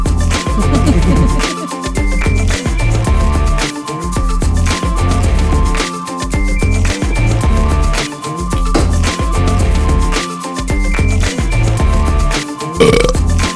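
Loud, drawn-out belching runs almost continuously, rumbling and pitched, broken only by a few brief pauses for breath, with no talking.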